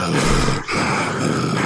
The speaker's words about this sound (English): And it's my fat breathing.